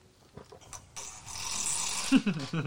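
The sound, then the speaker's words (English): A rough, raspy burp rises out of a breathy, hissing rush of air, ending in a few low, guttural croaks. It is fairly loud, with no talking over it. “Burp now too.”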